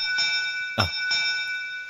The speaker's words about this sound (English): Quickly. Man the bow and sound the bell. Onwards.